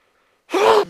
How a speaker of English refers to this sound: Sorry about that. I tried to sneeze away from the mic.